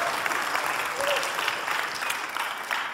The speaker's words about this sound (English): I'm the only one talking, and it would help me if you raise a hand, clap, shout a little bit, and let me know that you're still alive.